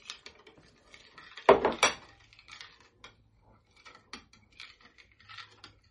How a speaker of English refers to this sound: You don't have to completely dissolve it. Just give it a good stir. You want to distribute the sugar.